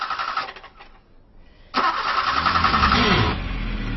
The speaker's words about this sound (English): Maud picked me up at the local station, but was having some trouble getting the car started.